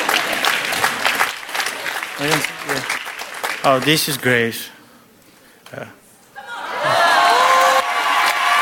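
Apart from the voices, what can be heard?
audience applause and cheering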